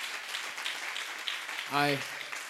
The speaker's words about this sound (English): Let's clap hands for Jesus Christ.